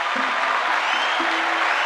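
A crowd claps steadily in a dense, continuous round of applause, a wash of many overlapping hand claps that stays fairly loud and even throughout, with no voices standing out.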